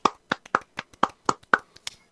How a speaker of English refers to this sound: Everybody, please give a round of applause